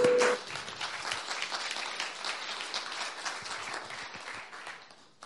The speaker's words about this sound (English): Colin, would you want to come and speak to us? Let's give Colin a warm round of applause.